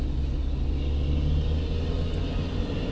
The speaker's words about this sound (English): Jeez, truck. The old Mack truck sitting next to me.